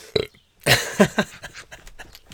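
A loud, rumbling burp after flute playing bursts out after a brief short sound, followed by a few softer, gurgling pulses trailing off.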